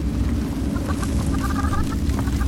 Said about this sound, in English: Was that a chicken?